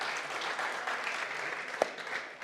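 round of applause

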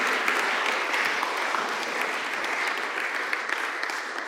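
audience applauding

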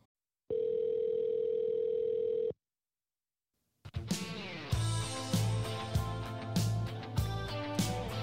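telephone call connecting tone

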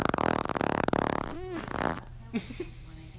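fart

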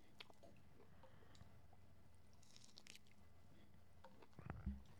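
chewing juicy food

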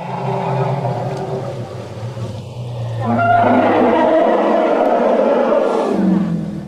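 elephant roaring

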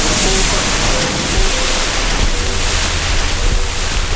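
sea waves breaking

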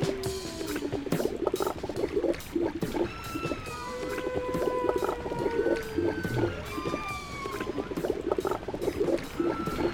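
whale vocalization underwater

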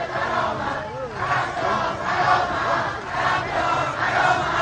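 protest crowd chanting slogans

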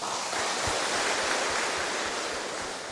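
audience applause

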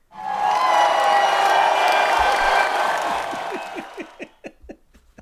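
crowd cheering and applauding

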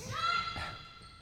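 basketball bouncing

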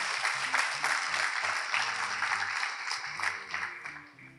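polite clapping

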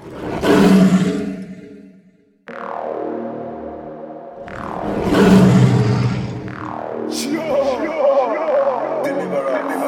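lion roaring

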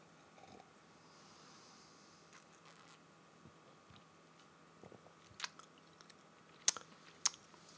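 sipping sour beer

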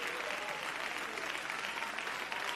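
audience applauding

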